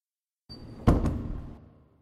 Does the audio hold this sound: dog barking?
no